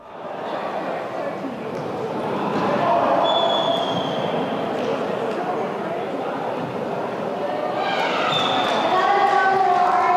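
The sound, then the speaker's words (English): A loud crowd cheers without pause as a team scores at the GTO German Company Charity Soccer Tournament in Taipei Gymnasium, which has been turned into an indoor soccer field. A dense roar of many voices swells after the first seconds, with a few high squeaky tones cutting through near the end. “The gym echoes with loud cheers as a team scores.”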